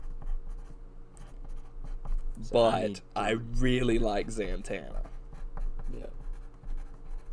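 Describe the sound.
A pen scratches steadily across paper as a list is written, soft irregular strokes running throughout, while a person briefly speaks over the writing midway.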